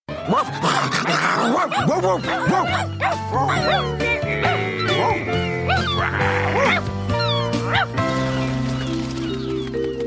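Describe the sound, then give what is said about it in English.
A voice actor imitates a small dog in a cartoon, yipping and barking in quick bursts over a steady bed of music, the yaps rising and falling with a whiny, playful pitch. “I think, about the whole show is that when the dogs bark, it's just their voice actors barking.”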